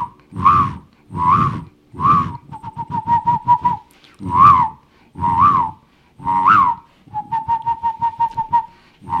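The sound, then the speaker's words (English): A person imitates the cooing of a male dove courting a female dove: three drawn-out, swelling coos followed by a rapid stuttering run of short notes, with the whole pattern repeated twice, fairly loud and without talk. “So whenever you hear, that's a male dove. Yep. Courting the female dove.”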